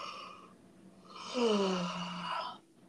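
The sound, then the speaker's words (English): A person yawns once, a long breathy intake swelling into a drawn-out voiced groan that slides downward and trails off. It is fairly loud, with no talking around it. “That yawn was brought to you by me.”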